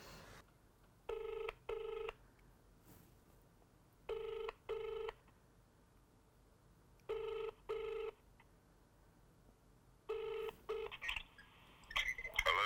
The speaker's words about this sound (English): Shit, just ring him. Yeah, let's ring him. His number.